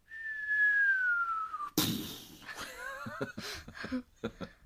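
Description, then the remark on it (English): A person whistles a long, steadily falling tone, mimicking an incoming mortar as in a World War II movie, then breaks into a noisy mouth-made burst like an explosion, followed by a few short sputtering bursts. “Would it be coming in like a mortar from a you know, World War II movie?”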